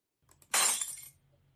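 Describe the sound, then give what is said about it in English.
A drinking glass is knocked over and smashes: a couple of small knocks, then one loud, bright shattering crash that rings briefly before fading into a quiet hum. No talking. “I knocked over and smashed my glass.”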